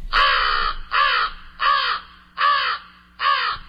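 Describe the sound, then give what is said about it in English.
An American crow caws five times in a steady series, each harsh, raspy call about half a second long, with brief pauses between them and no voices. “Well, here's the voice of a crow. I think most people are pretty familiar with this. This is the American crow.”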